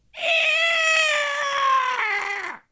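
A single loud, drawn-out pterodactyl screech from the sky, a raspy wailing cry with a rich harmonic tone that slides slowly downward in pitch over about two seconds before cutting off, with no talking.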